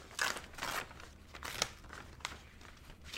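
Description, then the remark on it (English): Crisp paper rustling and tearing, with several bursts of crinkling and scraping spread unevenly across the moment as a mailed envelope holding a painting and a note is ripped open, tearing a small corner of the paper inside; no voices. “I'll open this one from Sophie, and I'm opening it now. And I shouldn't have ripped like that because I'm seeing some paper in here.”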